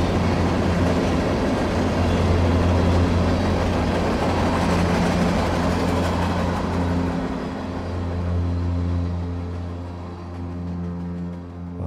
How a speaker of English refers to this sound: It started. The car started. It worked at last.